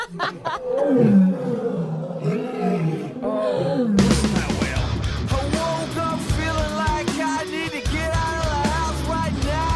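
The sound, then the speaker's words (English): A loud, drawn-out animal roar with deep, wavering bellows, shifting after a few seconds into a denser, harsher roaring that continues steadily to the end, with no talking. “What does a whale sound like when it's taking a crap?”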